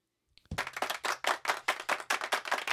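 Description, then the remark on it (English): A small studio audience claps steadily after a poem, a quick run of sharp, overlapping claps that starts abruptly after a brief pause and keeps going without any talking. “We got a studio audience in here even clapping.”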